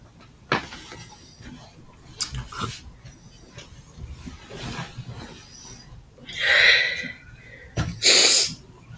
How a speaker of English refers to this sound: Sorry, y'all. That background noise is a little sniffles.